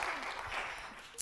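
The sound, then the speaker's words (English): An audience applauds, a dense, steady patter of many hands clapping at moderate volume, with one sharper clap standing out near the end. “Should we give her a clap?”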